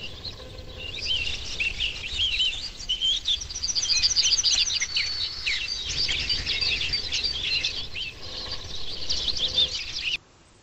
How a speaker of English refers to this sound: As the dawn breaks from pink to yellow light, the chorus reaches a crescendo. The artificial birds become harder to distinguish from the real. We realize they're dominating.